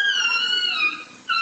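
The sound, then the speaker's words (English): A small chihuahua yelps in pain after being attacked on a residential street in L.A., as its owner wrestles it away: a loud, sustained high-pitched cry that dips briefly near the end before a final sharp squeal. “The homeowner wrestles his dog away, but not before the little guy yelps in pain.”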